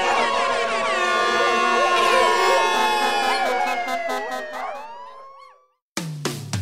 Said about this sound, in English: Come on down to Arthur the Psycho Mutt's air horn warehouse and get yourself an air horn now!